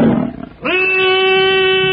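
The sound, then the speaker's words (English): A saber-toothed tiger growls low and raspy, then breaks into a loud, sustained roar that rises sharply and holds a steady tone as it is about to charge, in a lighted pit-like chamber, with no voices. “A saber-toothed tiger! Hurry now, Tarzan! Look out! It is going to charge!”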